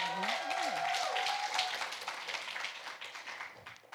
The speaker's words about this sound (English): So we said that this year, somebody clap your hands for the fact that we're in our eighth year of ministry.